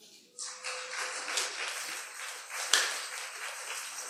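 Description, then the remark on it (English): An audience claps together as an offering during a church service, in a steady, dense wash of applause that starts abruptly after a brief quiet moment and keeps going at an even loudness, with one sharper clap standing out partway through. “Lift up your hand and give him a clap, offering.”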